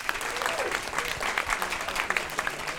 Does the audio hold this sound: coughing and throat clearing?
no